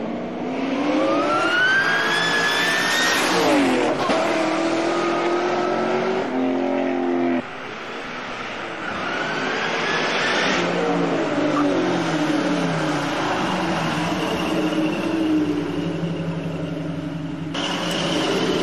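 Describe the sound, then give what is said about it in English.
A Cobra car engine revs hard and loud, its whining pitch climbing and dropping in repeated sweeps, with a sustained roaring drone running throughout and no talking. “Yep, that car's blown up.”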